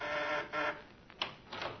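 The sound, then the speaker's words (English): A doorbell rings in a few short, uneven bursts, a bright, harsh buzzing tone that pulses on and off for about two seconds, with no voices. “The doorbell rings.”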